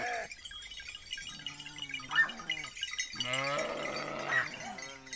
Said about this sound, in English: bringing his 50 belled sheep down for milking to a village above Carrara in the Marble Mountains in Tuscany as the church bell rings to signal a funeral.